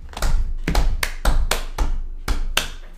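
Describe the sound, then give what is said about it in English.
About eight sharp, loud hand claps in a loose, slightly uneven rhythm, each a crisp smack with a quick decay, with no talking over them. “For all the black queens out there, y'all get an organic clap on that for real.”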